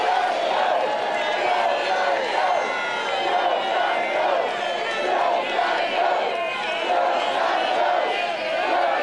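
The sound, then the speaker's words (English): A large crowd cheers and shouts continuously, a loud, dense wash of many voices with rising whoops and yells that stays steady for the whole stretch. “Yeah, the crowd was definitely feeling that one.”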